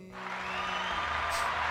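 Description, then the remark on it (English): A steady wash of applause, dense and even, holding at a constant level for the short stretch after a quick start, with a faint low hum beneath and no voices. “Love the applause.”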